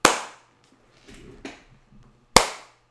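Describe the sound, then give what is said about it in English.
Two sharp, loud hand claps roughly two seconds apart, each snapping and fading quickly, with a brief soft rustle in the quiet gap between them. “I always clap twice.”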